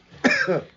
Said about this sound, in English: So as I cough off this weed, I'm sorry.